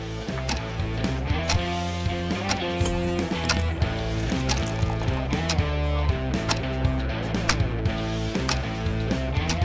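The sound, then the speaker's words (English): A quiz countdown timer runs as a continuous, fairly loud music bed with steady, evenly spaced percussive ticks driving it along for about ten seconds, with no one speaking. “Right then, start that clock.”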